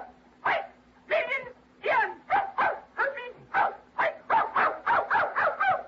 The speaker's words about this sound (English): Hey, you see? Hello. She said hello. That's a dog. It's canine.